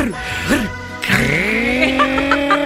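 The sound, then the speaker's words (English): A voice imitates a chainsaw: a buzzy, wavering drone that dips and rises, then revs upward into a steady, sustained whine for over a second. “We're just going to get the chainsaw out.”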